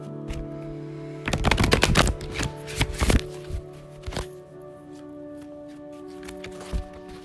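A deck of cards being shuffled before drawing a daily guidance card: a dense burst of crisp riffling and slapping clicks for about two seconds, then a few softer taps and flicks trailing off, with a steady low hum underneath.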